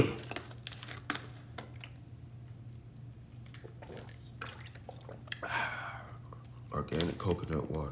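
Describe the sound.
Someone fetches a drink of organic coconut water and sips it: scattered clicks and handling noises over a low steady hum, a brief crinkly, liquid burst, then a voice starts murmuring at the end.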